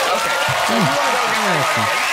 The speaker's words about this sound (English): Wow, cheering. I don't even know why they're cheering, but hip hip hooray.